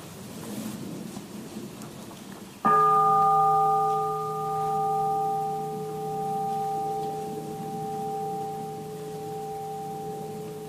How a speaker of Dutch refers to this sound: Let us listen to the bell and breathe. Laten we naar de bel luisteren en ademen.